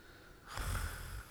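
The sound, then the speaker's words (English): A person imitates a snore with a single rough, throaty snort lasting under a second, fairly loud, with no talking around it. “Snore.”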